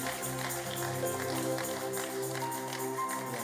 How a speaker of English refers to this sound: Give him a mighty clap offering.